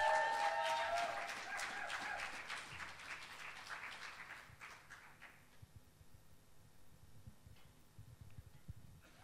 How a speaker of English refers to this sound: But if you'd like to give Rachel Corbett a round of applause. Woo woo!